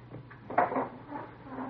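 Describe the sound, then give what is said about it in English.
A door swings shut with a single soft clunk, followed by faint rustling and a low room hum; no one speaks. “Close the door, huh?”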